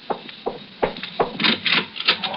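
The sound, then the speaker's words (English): Four firm, evenly spaced knocks on a wooden door, followed by a run of softer scraping and rubbing sounds. No voices. “Go to the door”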